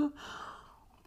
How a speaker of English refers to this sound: Let me slurp coffee first.